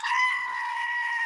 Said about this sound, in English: I have that exact same goat at work, and I picked it up and started squeezing it and went, oh no, I need a new battery for my goat.